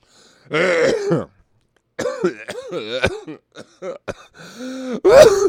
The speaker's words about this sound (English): The reefer got me coughing.